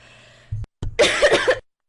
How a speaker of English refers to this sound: Make sure you cough a lot during streams. Yeah. Make sure you cough a lot. Make sure you get the plague if you're trying to record a podcast.